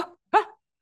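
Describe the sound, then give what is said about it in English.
A person imitates a dog with a single short, sharp bark, fairly loud, preceded by a brief fading vocal sound and followed by silence. “Why are you trying to sound like a dog? To learn how to like bark.”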